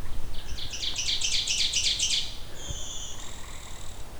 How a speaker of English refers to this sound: Here is our blue-winged warbler doing its bee buzz song.